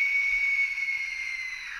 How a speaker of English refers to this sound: Oh, so this is the death whistle.